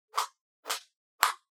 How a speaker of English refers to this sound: Who's clapping? Why are you clapping? That's my knuckles cracking.